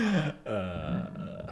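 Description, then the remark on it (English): A loud burp, low and croaky, rumbling on for over a second with a brief catch partway through. No one speaks over it. “Yeah, sorry, I burped.”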